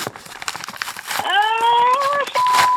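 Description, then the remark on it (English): Crisp crinkling of a big manila paper folder being handled for about a second, followed by a steady, sustained tonal whine with a brief higher note at the end. “I just got this big manila folder from the CIA.”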